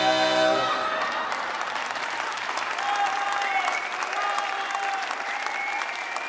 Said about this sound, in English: When the applause finally ended, Fred told the crowd to grab a beer and take a seat.